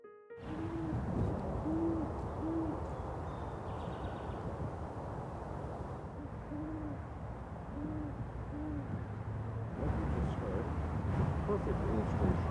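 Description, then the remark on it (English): A male great horned owl gives a series of deep, mellow hoots in short rhythmic groups of four to seven long notes, a pause between sets, over a steady background rumble. “a male great horned owl's call, 4 to 7 long, deep notes, very much like a French horn.”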